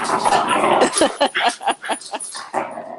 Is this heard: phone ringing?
no